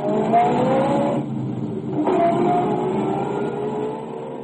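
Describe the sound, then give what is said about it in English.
A car engine revs and pulls away as it is driven to the Mansfield Mercantile Company: a steady low rumble with a whining tone that eases briefly, then surges again as the vehicle accelerates off. No one speaks. “I drove to the Mansfield Mercantile Company and nothing flat.”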